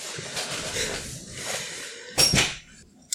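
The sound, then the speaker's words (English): Rustling and shuffling movement lead up to a single door being shut with a brief thud and latch click, followed by near silence. “Please, go. Shut the door.”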